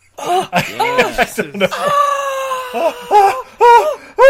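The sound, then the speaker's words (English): A drawn-out Wilhelm scream rings out loud as a city explodes in a movie, framed by short bursts of chuckling and excited vocal sounds before and after. “The Wilhelm scream.”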